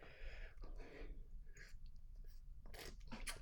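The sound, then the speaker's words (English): Someone takes a sip of a drink: quiet wet mouth and lip noises, a few short smacking bursts near the end, with no talking. “Let me take a sip of this hand dog.”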